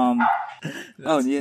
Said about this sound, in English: You hear your dog. She's out. She's outside.